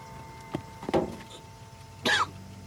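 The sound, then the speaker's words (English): A man, the character Bert, coughs up blood in a few rough, separate bursts, two close together and then one more after a pause, fairly quiet and with no talking. “Bert's coughing up blood now.”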